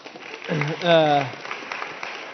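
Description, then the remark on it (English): Audience clapping for a guest brought up on stage, a steady patter of many hands at moderate loudness, with a brief voiced cheer or whoop rising over it early on before the applause carries on evenly. “We can clap for that.”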